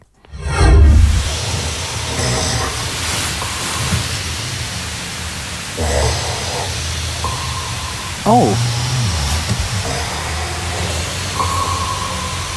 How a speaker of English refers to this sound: He goes, "Have a listen to this. Some guy's snore sounds like an echolocator or sonar from a submarine."